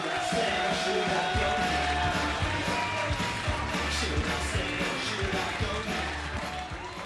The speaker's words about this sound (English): So if you could, start the applause, frog and bucket. After three, one, two, three. Build it up.